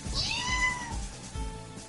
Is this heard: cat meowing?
yes